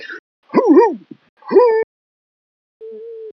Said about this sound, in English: I think it's puppies, sir. Oh, of course, puppies.